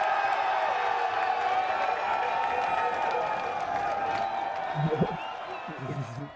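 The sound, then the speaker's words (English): A recorded crowd cheer from a past Blading Cup blading competition, from Butter TV: a large crowd roars and cheers continuously, a dense wash of shouting and applause that holds steady for several seconds before easing slightly near the end. “we have the Blading Cup cheer for him as well”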